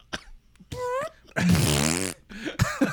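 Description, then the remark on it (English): A voice imitates a fart: short voiced bursts, then a long, loud, raspy blubbering buzz lasting nearly a second, followed by a few quicker sputtering noises. “And so not only did the fart fill that void, but we laugh like assholes for the next 5 minutes.”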